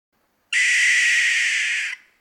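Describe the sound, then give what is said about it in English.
A barn owl lets out a single long, harsh, hissing scream lasting about a second and a half, loud, then it cuts off into silence. “barn owls don't hoot the way most owls do. Instead, they make a long, harsh scream that lasts about 2 seconds.”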